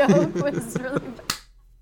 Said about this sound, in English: The slow clap.